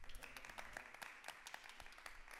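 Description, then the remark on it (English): A small group applauds together, giving the Lord a clap, many overlapping hand claps in a dense, uneven patter that holds steady at moderate volume for a couple of seconds. “From my small gallery, give the Lord a clap.”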